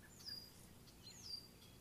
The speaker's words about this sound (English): And you can sneak up to some cattails or around cattails and throw creature bait or something like that, and those red-winged blackbirds just go nuts.